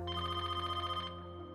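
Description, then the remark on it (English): A telephone rings with a rapid, trilling electronic bell for about a second, then cuts off, leaving a faint steady hum. No one speaks. It is a phone call from Jeff to Ed in July 1991. “Fast forward to July 1991, and Ed gets a somber phone call from Jeff.”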